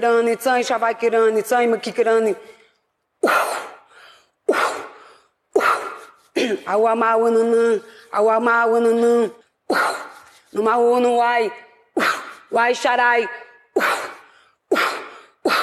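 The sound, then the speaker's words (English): Loud, forceful exhales come in a steady rhythm, alternating with sustained chanted vocal tones, in a rhythmic breathing exercise and incantation delivered on stage by an Indian woman to forum members at a breakout session of a conference in Davos, Switzerland. “Most recently, in one of the breakout sessions, an Indian witch was brought to stage where she delivered some sort of incantation and breathing spell on the forum members.”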